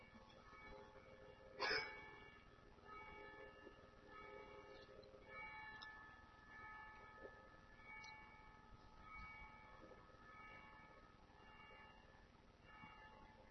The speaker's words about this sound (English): Oh, let's listen to the bell.